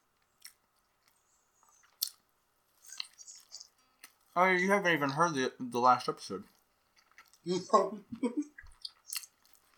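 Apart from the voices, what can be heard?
chewing food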